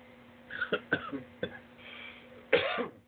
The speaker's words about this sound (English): Excuse me. Got the cough. Get it out of the way. Set my throat.